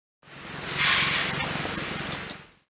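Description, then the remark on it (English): A broad-winged hawk gives one thin, high-pitched whistle, drawn out for about a second over a steady, breathy hiss of background noise. “The broad-winged hawk.”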